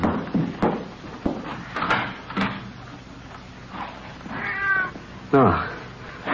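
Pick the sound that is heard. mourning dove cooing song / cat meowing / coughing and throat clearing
cat meowing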